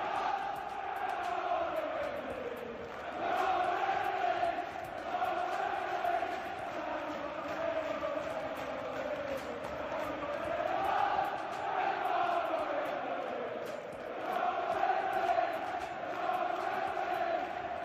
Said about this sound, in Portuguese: A torcida cantando, nós vamos ser campeões da Liga. E é o exato momento do apito final, a torcida vibrando e daquela explosão de alegria.